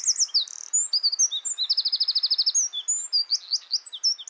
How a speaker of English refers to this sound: There's a tiny brown ball with feathers known as the Eurasian wren. It has an astonishingly loud and complex song for such a small bird.